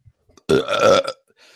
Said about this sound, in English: It's just like that burp there.